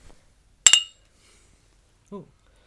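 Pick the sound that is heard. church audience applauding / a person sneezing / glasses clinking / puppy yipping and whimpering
glasses clinking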